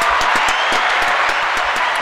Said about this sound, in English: Yeah. Let's get a round of applause for him.